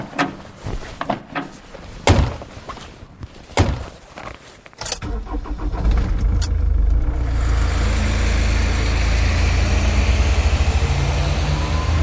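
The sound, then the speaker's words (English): A few sharp clunks like doors shutting, then a truck engine turns over at about five seconds and settles into a loud, steady, low idling rumble. Nobody speaks. “Reynolds, you're with me in the truck.”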